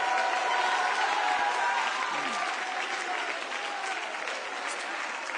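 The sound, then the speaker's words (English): An audience claps loudly and steadily with everything they've got, a dense unbroken wash of applause with voices shouting and cheering mixed in throughout as they shout unto God with a voice of triumph. “If you believe today is your day for a miracle, I want you to put your hands together and clap them with everything you've got. Now why don't you mix your voice with that and just shout unto God with a voice of triumph.”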